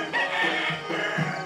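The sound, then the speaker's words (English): Roosters crow in the early morning in the village of Entelau, a steady, drawn-out call that fills the whole moment, clear, with a faint hum of outdoor background and no voices. “I wake up to the sounds of early morning village life. Roosters call, the coughing and clearing of lungs as the elders rise to perform their morning chores.”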